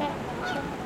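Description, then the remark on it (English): A flock of trumpeter swans, split into two groups between a beach and a parking lot, call in a dense, overlapping chorus of nasal, horn-like honks that stays loud and steady throughout the brief moment, with no voices present. “Trumpeter swans have split into two groups, one headed to the beach and the other half just staying at the parking lot.”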